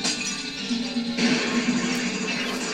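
glass shattering

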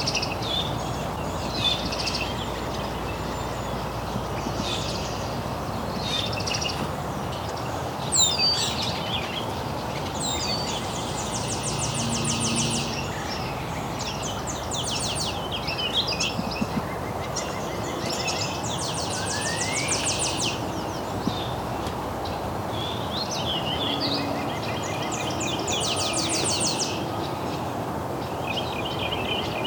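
european starling song

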